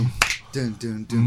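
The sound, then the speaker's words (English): One sharp, crisp hand clap rings out near the start, made as part of an a cappella chorus, followed by short bursts of voiced singing or humming. “I need a clap.”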